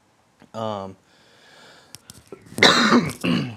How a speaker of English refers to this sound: I have like a cough or something. It's driving me crazy.